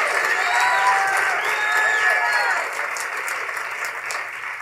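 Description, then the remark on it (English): An audience claps their hands to the Lord in a dense, sustained wash of applause, with scattered voices and faint whoops rising through it, tapering slightly toward the end. “If you receive it, go ahead and do what you're already doing. Clap your hands to the Lord.”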